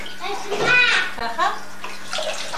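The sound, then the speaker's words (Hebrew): Water poured from a blue bottle into a blue part of a toy splashes and trickles steadily like a shower for a little girl, with a couple of short, high child-like vocal squeals rising over the running water midway through. “אני שופך, יש את הכחול הזה, והבקבוק כחול, ואני שופך מים לתוך הכחול, ואז זה עושה לה מקלחת כזאת, היא מסתכלת ומנסה לתפוס את זה.”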